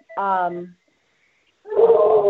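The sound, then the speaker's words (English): A hound dog lets out a loud, drawn-out bark, pauses briefly, then launches into a longer, wavering howl, with nobody talking over it. “Sorry, hound dog.”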